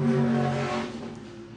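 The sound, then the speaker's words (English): A race car on a hot lap, being shaken down before heading to Pike's Peak, roars loudly with a steady high-pitched whine, then gradually fades as it pulls away. No voices are heard. “He's making a hot lap. Let's see what he's got soon. Listen to that thing.”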